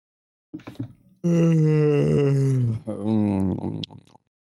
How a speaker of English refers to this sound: Wow. Really? Yawning?